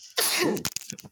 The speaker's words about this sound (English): So bless you.